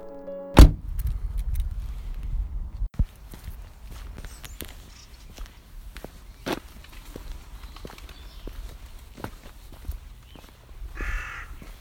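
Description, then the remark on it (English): Outdoor field ambience on an island in the River Trent near Burton-upon-Trent in the English Midlands: a steady low rumble with crows cawing, crunching footsteps and scattered sharp clicks, opening with a loud thump. No one speaks. “I'm standing in a field next to the River Trent, near the English Midlands town of Burton-upon-Trent.”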